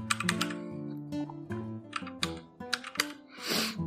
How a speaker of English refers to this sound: Sorry, guys. I'm a little slow this morning. If you couldn't tell by the typing speed, it's like a little slow.